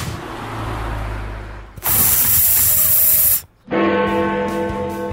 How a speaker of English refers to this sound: Angry cats sort of sound like Chris Eubank.